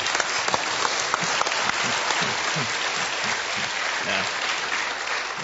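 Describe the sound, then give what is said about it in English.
A crowd applauds steadily for several seconds, dense overlapping claps at a fairly loud, even level, with a voice faintly audible underneath. “We clap for what the grace of God accomplishes when we yield to Him.”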